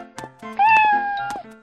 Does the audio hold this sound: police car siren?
no